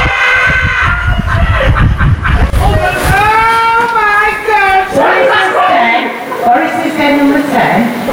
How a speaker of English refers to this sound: I've got a clip of the bingo so you can hear it in action. And again, let me remind you that we are four doors away, and all I've done is stuck a microphone out of the window here.